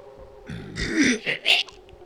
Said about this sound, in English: The swamp made a belching noise